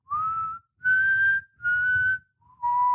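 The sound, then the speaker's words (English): A person whistles a short four-note tune, clear, each note held about half a second with brief gaps, the last note dropping lower than the rest. “start practicing my Mockingjay whistle”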